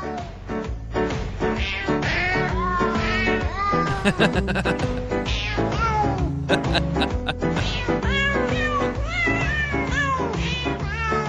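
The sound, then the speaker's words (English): Cat meows pitched and sequenced into a bouncy Christmas tune, with a steady backing beat and bass underneath, loud and continuous like a novelty holiday record, no voices speaking. “I just picture like 14 guys in a recording studio playing a bunch of Alley Cats like an accordion.”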